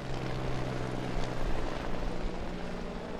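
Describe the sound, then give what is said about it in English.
A red helicopter takes off and flies overhead, its rotor and engine producing a steady, loud throbbing drone that swells slightly midway and holds throughout, with no voices. “I see Rick Hendrick's red helicopter is taking off from behind us. Oh, it's going to fly right over us here.”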